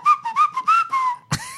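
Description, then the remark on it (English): A person who once had a retainer whistles a quick, choppy run of about five breathy notes, then a sharp puff of air and one short upward-sliding whistle. “Ever since I had a retainer, I can only whistle like.”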